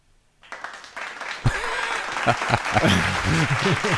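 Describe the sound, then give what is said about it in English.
Applause sound effect played from a soundboard swells in quickly and keeps going as steady, dense clapping, with a few faint voices and cheers mixed into the crowd noise. “Well deserved applause for the, thank you very the much.”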